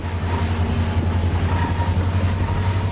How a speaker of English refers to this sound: Then climb aboard an EMD SD-60 freight heading east over the mighty Sierra Nevada.